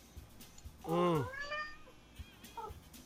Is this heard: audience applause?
no